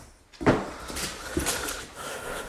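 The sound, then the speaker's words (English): A dog pants and snorts while playing and biting at a person, with short sharp snuffling bursts breaking through steady breathy huffing. “It's tough keeping a dog entertained.”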